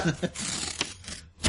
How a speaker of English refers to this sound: All right, cards get shuffled back up.